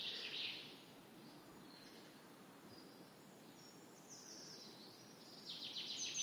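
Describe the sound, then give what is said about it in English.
A male chaffinch sings in a quiet English woodland in early spring, its bright, descending trills repeating over a soft background hush, with no voices present. “It's that male chaffinch again.”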